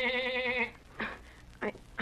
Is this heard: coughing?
no